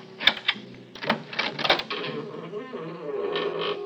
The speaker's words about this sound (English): I stood listening for a long time before I slipped one of my newly made keys in the door.